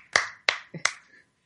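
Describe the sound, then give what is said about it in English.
A few scattered, sharp hand claps, three or four in quick succession, trailing off into quiet like the tail end of applause fading out, as people applaud a joke about gingers. “So people literally applaud his ginger joke.”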